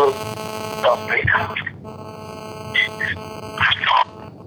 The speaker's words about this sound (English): I'm not sure who that last message was from. It was brief. Clicks and beeps. I could barely hear anything. Sounded like someone might need help.